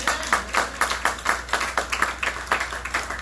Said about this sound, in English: If you believe that, come on, clap your hands.